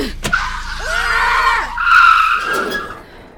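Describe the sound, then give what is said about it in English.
Car tires skid and squeal in a long, loud, high-pitched screech lasting a couple of seconds, rising and wavering before fading out, with no voices, as a car being chased brakes hard before tire spikes. “We're not gonna be able to brake in time!”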